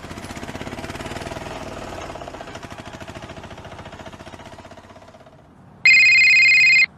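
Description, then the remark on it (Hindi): A steady, rattling mechanical rumble pulses for several seconds, then a mobile phone rings with an incoming call, a loud, bright electronic ringtone cutting in abruptly for about a second. “तीन दिन बाद उसे एक कॉल आया।”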